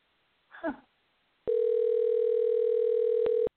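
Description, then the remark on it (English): A brief muffled blip, then a single steady ringback tone of an outgoing phone call to a man who does not recognize the number, holding for about two seconds with a thin, line-filtered sound before cutting off. No one answers or speaks. “Not even answering. He's looking at his phone.”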